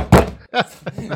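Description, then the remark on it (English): A single heavy thump of a hand slamming down on a table, sharp and loud, followed by a few brief, quieter voice sounds. “I'm sure the editing team will be most grateful of you slamming the table.”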